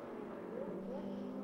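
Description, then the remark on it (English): A steady, droning roar of Lamborghini race car engines on a race track as the number 84 car gets by the number 15 car, holding a constant pitch, loud and continuous with no distinct pass-by swell over the short stretch. “The 84 has gotten by the 15 car.”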